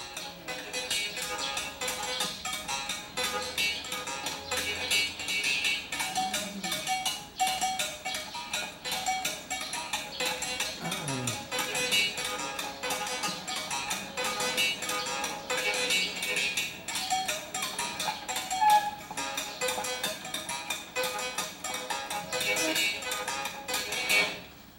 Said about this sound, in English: This is actually three Jaws harps bound together, and she's playing two of them. There, he's playing all three.